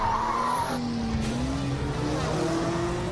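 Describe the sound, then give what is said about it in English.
Race car tires skid with a sustained, wavering squeal over a steady engine roar, loud, running continuously for about three seconds with no voices. “Oh, there's a skid. Oh, and there's a wreck. The cars are piling up.”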